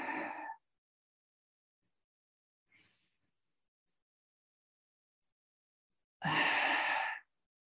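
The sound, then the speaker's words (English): Slow, deep breaths during a breathing meditation: one long airy exhale at the start, a faint short breath in the middle, and another full, loud sighing breath after a long quiet pause. “Loving the sounds that we make when we breathe.”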